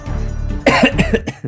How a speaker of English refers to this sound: You just coughed over the outro.